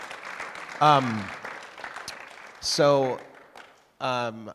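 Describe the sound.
A crowd claps steadily in a dense, crackling wash of applause for a man being thanked, with three loud voiced bursts of shouting or cheering rising above it. The clapping thins toward the end.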